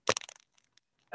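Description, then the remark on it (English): A wet fart sound effect: a loud, sputtering burst of rapid crackly pops that quickly fade, a couple of faint clicks, then a short buzzy rasp at the end. “where's the fart sound?”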